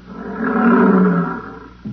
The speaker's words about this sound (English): Oh, here come the lions.